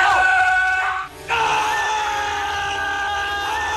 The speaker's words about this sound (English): So I'm going to have to do a side by side for the listeners because I swear it's the same scream.